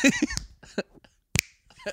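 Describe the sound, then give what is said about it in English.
Several people snap their fingers together, a few crisp dry clicks capped by one loud, sharp snap, with brief murmured voice sounds in between. “Well, you snap your fingers way better than I did.”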